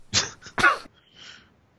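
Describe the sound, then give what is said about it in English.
A few harsh coughs from laughing in quick succession, the first two loud and forceful, followed by a softer breathy trailing exhale, with no talking. “I just had to mute myself before I was cough laughing.”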